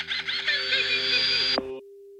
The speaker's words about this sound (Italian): Cade la linea. Il telefono dello studio era fuori uso.